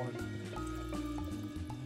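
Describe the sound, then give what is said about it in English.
Wine pours steadily into a glass for a couple of seconds, a continuous gurgling stream whose tone shifts as the glass fills. No one speaks. “Now, that's a pretty long pour, but it's a short pour.”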